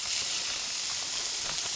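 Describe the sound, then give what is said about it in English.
Steady, bright sizzling of ground beef being crumbled into a very hot pan and frying, a continuous hissing crackle with small pops, moderately loud and without any talking. “I think I got the pan too hot because now it's going to cook this before I even get it all crumbled in.”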